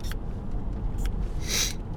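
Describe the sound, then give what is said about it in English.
Two quick, soft spritzes from a nasal spray being sprayed into a person's nose for allergies, then a longer, louder hissing puff, over a low, steady background rumble with no talking. “Sorry, I'm going to have to spray my nose.”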